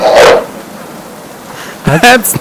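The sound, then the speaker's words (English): Two short, loud dog-like barks separated by a quiet pause: first a rough, breathy bark, then a higher, more tonal yelping bark ending in a quick clipped yip. “He just barks like a dog, kinda.”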